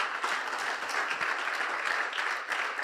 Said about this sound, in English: Someone give God a round of applause for that revelation today.